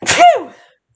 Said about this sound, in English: Excuse me, I gotta sneeze. Oh, God.